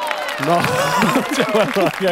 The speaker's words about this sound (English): There is some low gusto cheering in that cheer. I think that's what's bothering us. Let's forget the cheers from now on.